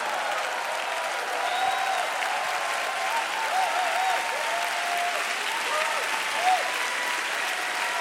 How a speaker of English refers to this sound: I said, I thought you'd be standing and clapping and shouting and shouting.